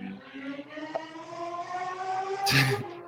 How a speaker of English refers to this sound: I don't know if you can hear that. Is that a Lamborghini? It sounds like a Formula One car.